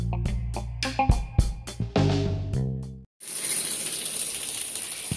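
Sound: shower water running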